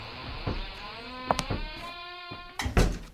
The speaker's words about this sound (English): Seems to stick a little. Oh well, there it is. Doesn't sound as though that door had ever been opened. Well, a little oil in the hinges will fix that, all right.